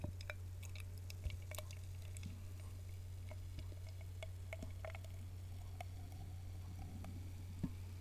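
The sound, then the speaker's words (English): Hazy LA IPA beer poured into a glass, heard as a soft, steady fizz with scattered tiny pops and drips over a constant low hum, quiet, with no one talking. “Let me pour it into a glass so I can see the”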